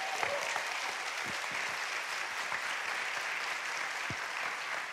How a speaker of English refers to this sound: Come on, if you believe that, give the Lord a hand clap of praise.